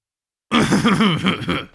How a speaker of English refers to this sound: I clear my throat to gather everyone's attention.